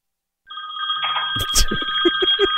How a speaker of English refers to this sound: I forgot to put it on airplane mode. So I got a call during this live news conference, and listen to how the mayor handled this stressful situation.